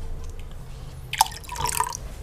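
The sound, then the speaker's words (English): A single bright drip lands, followed by a brief splashy trickle of water being poured as a drink and a couple more drops, over a low steady hum with no talking. “I saw the drip. Dude, that sounds good right there.”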